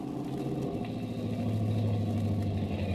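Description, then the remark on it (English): A car engine rumbles steadily, its low drone shifting in pitch partway through as the car slows and settles into an idle, pulling up in front of the Biltmore Hotel at 5th and Olive Street. No voices. “Several minutes later, the car pulls up in front of the Biltmore Hotel at 5th and Olive Street.”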